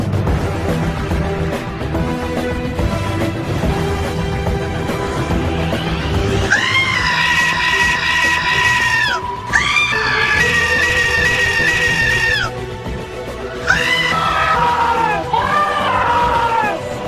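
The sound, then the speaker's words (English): Goats scream in loud, drawn-out, wavering cries, several in a row with short gaps, over a steady busy background that sounds like music. “Wow, we had talked about a TARDIS jukebox, and apparently the goats really got into that.”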